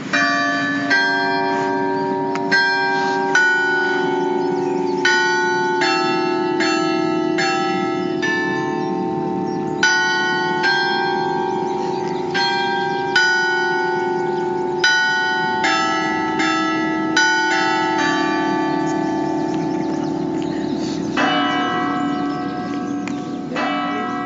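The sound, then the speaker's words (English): Basilica bells ring out a slow melodic tune, the Ave Maria, before chiming out the hour, with repeated struck tones and long ringing overtones, loud, with no voices. “The basilica bells ring the tune of Ave Maria before chiming out the hour.”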